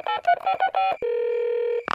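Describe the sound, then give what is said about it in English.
A quick series of five or so electronic telephone keypad beeps, clear, as someone dials a phone call, followed by a longer steady tone and a brief click at the end. No one speaks. “I'll give them a call.”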